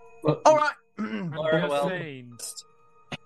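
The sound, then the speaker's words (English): A voice makes an exaggerated, drawn-out throat-clearing 'ahem', with a short voiced burst followed by a longer rising-and-falling hum, fairly loud, then a faint click. “Clear her throat and then move her coat to the side to show the two plasma grenades on her belt.”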